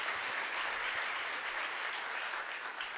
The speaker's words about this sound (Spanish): Ahí abajo el aplauso. Amén, amén.